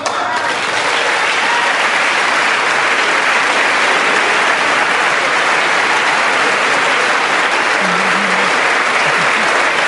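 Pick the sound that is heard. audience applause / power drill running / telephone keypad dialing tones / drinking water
audience applause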